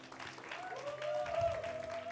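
An audience at a Mother's Day gathering claps steadily for a couple of seconds for the speaker's wife, a dense, even patter of many hands swelling slightly toward the end, with a faint tonal hum running beneath it.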